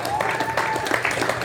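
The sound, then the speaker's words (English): An audience breaks into steady applause for the hockey team's undefeated season, a dense, even patter of many hands clapping at once, fairly loud throughout with a faint whistle or cheer rising briefly within it. “Should we clap for that? Well, we should clap for that.”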